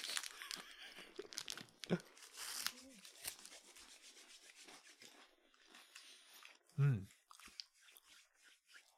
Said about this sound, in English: Watch us eat crisps and other nonsense.